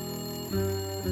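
A woman's phone rings with a steady electronic tone that shifts pitch partway through, fairly loud, with no voices.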